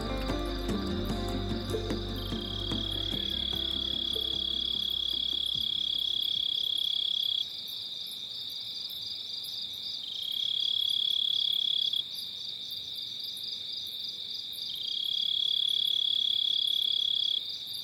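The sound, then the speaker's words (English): A dense, continuous chorus of crickets and insects trills steadily in high, shrill pulses, with a few low rumbling sounds fading out early, giving a nighttime outdoor ambience with no voices. “Listen to all of the insects, especially the crickets.”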